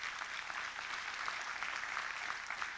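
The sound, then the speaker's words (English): A church audience clapping steadily in praise of God, a dense, crackling wash of many hands that stays at an even level for the whole few seconds, with no voices standing out. “Let's thank him and let's clap and give him praise because he's worthy of it.”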